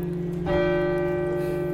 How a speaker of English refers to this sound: Sometimes I feel like if I close my eyes and listen, I could hear the church bells of that abbey and those monks.